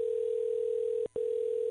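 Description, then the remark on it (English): A steady, loud telephone tone hums at a single pitch, cut by one brief gap before it resumes, clear with no voices; the tone comes before Richard Simmons's voicemail greeting. “Oh, is this the voicemail that Carney left for Richard Simmons?”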